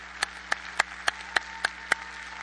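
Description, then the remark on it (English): Eight sharp hand claps from an audience in an auditorium clapping for the Lord, landing in a steady, even beat, about three per second, over a faint low hum. No voices or shouting come through, just the rhythmic clapping. “And let's give the Lord a shout and a clap.”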